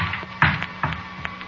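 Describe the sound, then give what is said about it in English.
The wooden door of the Camera Obscura bangs shut with a dull thud, followed by a few lighter knocks and rattles as it settles. No voices are heard. “The wooden door bangs behind us.”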